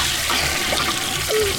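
A toilet flushes with a steady, loud rush of water filling the whole moment, close up and continuous, with a faint gurgle near the end and no voices.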